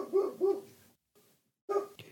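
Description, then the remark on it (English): A female dog under a porch barks a few times in quick, muffled bursts, two close together and another after a short silence, fairly quiet. “Do you hear my dog barking?”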